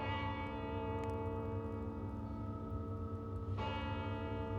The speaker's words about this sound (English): Just as I was dozing off, I remember hearing the neighboring clock chime 2.